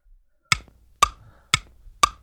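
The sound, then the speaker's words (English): A game timer clock ticks steadily during a quiz round with 30 seconds on the clock, four crisp, sharp clicks spaced about half a second apart, fairly loud against an otherwise quiet background. “30 seconds on the clock.”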